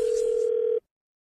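A steady, unbroken telephone dial tone hums at one fixed pitch for just under a second, then cuts off abruptly into silence, just before a prank call in a Phone Tap segment. No voices accompany it.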